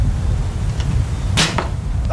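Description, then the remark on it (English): An arrow whips through the air and strikes a target with a sharp thwack, followed by a fainter second snap, over a steady low rumble with no talking. “Give me another arrow,”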